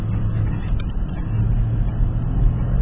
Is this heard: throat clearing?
no